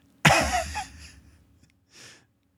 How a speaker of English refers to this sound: Good cough. I like that.